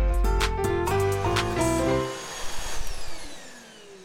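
A vacuum cleaner runs loud with a steady motor whine that shifts pitch a few times, then switches off and winds down, its hum fading over the last couple of seconds.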